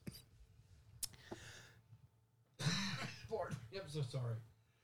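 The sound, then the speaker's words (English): A man clears his throat harshly and coughs a few times, a rough, raspy burst after a quieter opening, with voiced, throaty grunts mixed in. “I've been coughing all week.”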